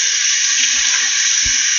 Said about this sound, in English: The water's running.